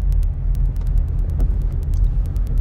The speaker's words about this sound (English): I'm about to embark on this nice traffic, and oh, look, an accident.